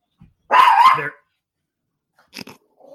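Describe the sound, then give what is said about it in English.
A dog lets out one loud bark, followed a moment later by a couple of shorter, quieter yips and a faint whine. No talking. “Chill, dog.”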